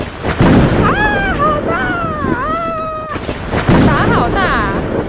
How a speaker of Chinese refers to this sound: 这是一个狂风暴雨的日子。